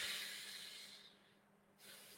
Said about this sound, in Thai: ก็บางคนก็จะบอกว่าลมหายใจใช่ไหมครับการสูดลมหายใจลึกๆเนี่ยจริงๆมันก็ช่วยได้อย่างรวดเร็วเลยนะฮะ